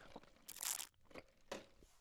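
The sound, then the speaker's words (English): Someone sips a delicious latte: a longer, hissy slurp followed by a second shorter sip, with small wet mouth noises between and no talking. “And so now it's time to cue the outro while I sip this delicious latte.”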